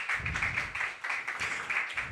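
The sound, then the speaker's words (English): An audience at an open mic reading night applauds its open mic readers steadily, a dense, continuous patter of many hands clapping at once, fairly loud and sustained throughout with no voices on top. “All right, folks, it is that time of the night, but really quickly, let's give a big round of applause for all of our open mic readers.”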